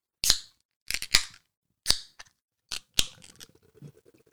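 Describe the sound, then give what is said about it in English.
A can or bottle of Cheshire Cat beer being cracked open: several sharp metallic clicks and snaps, then a crisp pop followed by a soft, crackling fizz. No one speaks. “Let's crack into it and see if we enjoy a bit of this Cheshire Cat.”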